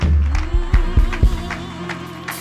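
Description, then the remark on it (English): An audience gives the Lord a hand clap in a steady, rhythmic beat, sharp bursts landing about twice a second over a sustained low musical drone, with a faint crowd murmur beneath. “Give him a hand clap.”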